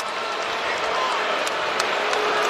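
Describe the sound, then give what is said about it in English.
A large basketball arena crowd in San Antonio boos basketball player Kawhi Leonard in a steady, dense roar that fills the space, with a few sharp claps or thuds cutting through the noise. “Can we stop all the booing, let these guys play?”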